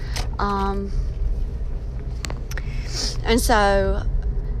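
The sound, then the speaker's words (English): A steady, low road rumble of heavy traffic runs throughout, heard from the middle of the traffic, with a couple of short, tonal voice-like sounds rising briefly above it. “Sorry, I'm in the middle of traffic.”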